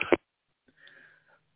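A person begins to cough: one short, sharp, close-up burst, followed by a quieter, muffled throaty rumble trailing off a moment later.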